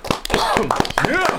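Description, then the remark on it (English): Scattered hand claps ring out in quick, uneven bursts, mixed with voices cheering and whooping, a short lively round of applause from a group welcoming a producer. “Let's give a warm round of applause for ….”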